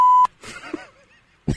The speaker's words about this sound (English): I'm going to say the name and you're going to hit the beep button as we get ready.